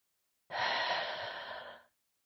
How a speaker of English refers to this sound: Let's take a few deep breaths, big inhales, big exhales.